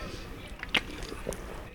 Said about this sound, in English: We both took sips at the exact same time.